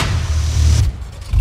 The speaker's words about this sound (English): And I'm like, wait a minute. That's a V6.